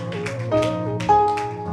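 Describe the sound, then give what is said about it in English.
An audience claps during a sermon in loose rhythm, sharp bursts of hand claps landing over sustained, steady musical tones, with no one talking. “If you want to clap, it's good.”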